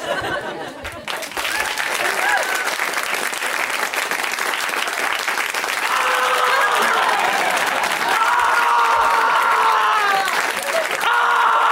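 A loud, steady round of audience applause at a stand-up comedy show, greeting the comedian's impression of men doing stand-up, fills the whole stretch, a dense wash of clapping that stays strong throughout, with whoops and cheers rising over it in the second half.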